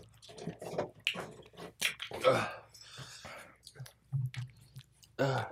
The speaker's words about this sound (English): Maybe it'll clear my sinuses. 100%. I'll probably singe them. Oh. Dude, that was nasty. I'm gonna chew it